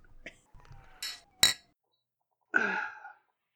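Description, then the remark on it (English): Glasses of Malibu clink together in a toast: two quick, bright taps, the second one sharper, then a short breathy sound after a pause. “Oh, hang on, let me clink. Okay. Three. Bottoms up, boys. Two, one, clink. Clink.”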